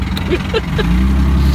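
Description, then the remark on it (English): A car engine right beside the listener idles with a loud, steady low rumble that holds throughout, with a few brief, faint higher-pitched sounds near the start. “Maybe it's that car beside us making all that noise.”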